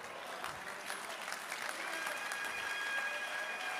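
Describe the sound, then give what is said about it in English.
An audience claps their hands together, a steady wash of many overlapping claps that stays fairly even and moderately loud, with a few faint tones running through the background. “You are not even clapping your hands well.”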